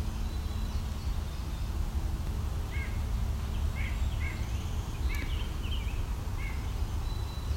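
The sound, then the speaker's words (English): One or two great crested flycatchers give a series of short, rising whistled calls, repeated every half second or so over a steady low rumble of background noise. “There's also a great-crested flycatcher or two here.”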